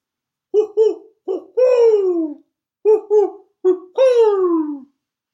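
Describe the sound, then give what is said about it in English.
An owl hoots two matching phrases, each a few short clipped hoots followed by a long, drawn-out call that slides downward. The calls are clear, with no talking. “I stewed up the dove and ate it, and now we've got a boiled owl.”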